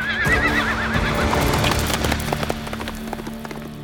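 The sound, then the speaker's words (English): Zorro's black horse whinnies loudly with a wavering, high-pitched call, followed by a quick run of hoofbeats clattering in rhythm as it gallops off into the desert, fading slightly toward the end. “The men raced after Zorro, with Ramon close behind, but as soon as they were outside, they saw Zorro already on his black horse, speeding into the desert.”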